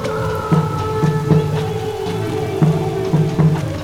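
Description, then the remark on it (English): Heavy rain pours in a steady, dense hiss, with repeated dull knocks and a sustained tonal drone layered over it. There are no voices. “We were following some blind sorcerer, I guess, down the streets in pouring rain.”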